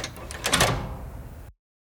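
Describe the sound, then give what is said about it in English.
A door opening: a quick cluster of sharp clicks and rattles, then a rough, steady scraping swing for about a second before the sound cuts off abruptly. “can you open the door?”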